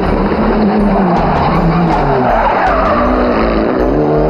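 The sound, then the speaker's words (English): A Lancer Evo 3 rally car making its debut, driven hard on tarmac by Tommy Mäkinen, its engine roaring loudly and continuously with tires skidding and squealing through the corners, intense throughout. “Mäkinen coming to terms with the new car on unaccustomed tarmac very quickly indeed.”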